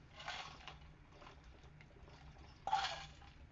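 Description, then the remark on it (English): Someone takes a quick drink: a faint sip and a sharper slurp or swallow a couple of seconds later, over a low steady hum with no talking. “Take a quick drink here while you get your packet all ready, and turn to the first page of that, which is exercise one.”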